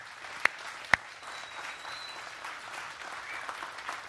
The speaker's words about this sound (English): And as your pastor, I applaud you for that decision. And our church applauds you as well.